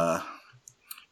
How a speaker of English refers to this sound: Everyone, excuse my typing. I gotta look this up now.